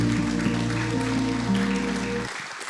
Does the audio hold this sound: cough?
no